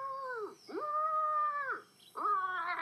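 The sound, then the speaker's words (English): A voice imitates a brachiosaurus call with three long, howl-like tones, each held steady then sliding downward in pitch, the last one starting higher. No words are spoken. “Brachiosauruses don't roar like that. They're more like...”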